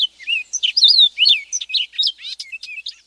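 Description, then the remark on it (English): A European starling sings a rapid, varied stream of whistles, chirps, and clicking notes, heard alone without any talking. “Mozart's Starling”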